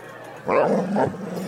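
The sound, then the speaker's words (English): A dog barks twice in quick succession, a full bark followed by a slightly shorter second one, over a faint steady background hum. “And he probably barked just like that.”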